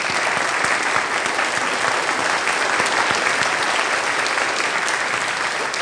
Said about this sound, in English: Can y'all give your leaders a big round of applause? Yeah.